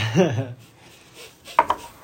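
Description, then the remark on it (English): A short hummed vocal sound, then a faint quiet sip of coffee, followed by two quick hard knocks as a mug is set down on a surface. “I'm going to sip my coffee.”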